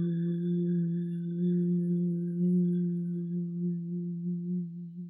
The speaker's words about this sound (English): And then we'll just chant this sound, hum, 3 times. Inhale. And on the exhale, begin to chant, hum.